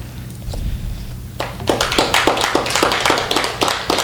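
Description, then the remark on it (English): After a quiet moment with a low hum, an audience breaks into clapping: bright, crisp claps in a fairly steady, rapid rhythm that stays loud until the end, with no talking. “You are all darling and dear to clap, but I will tell you in the interest of it's a long, hour.”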